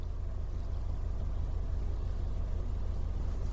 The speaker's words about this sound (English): We're close up to the ships now and they look even bigger. The sides of the ship tower above us and the audible hum is, of course, a lot more audible.